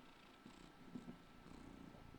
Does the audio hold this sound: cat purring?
yes